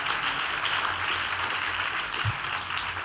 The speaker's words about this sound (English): They clap your hands. Amazing, amazing ministration. Clap your hands for the man of God.